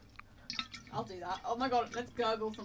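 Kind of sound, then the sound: human body sound, gurgling water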